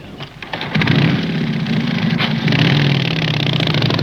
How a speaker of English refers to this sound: So yeah, a motorcycle riding... a motorcycle riding Edgar Allan Poe is an observer of morality... alongside God in this. Yeah. And the guy looked really cool, but yeah, he had a Lenore on the back of the bike and a bird on his shoulder.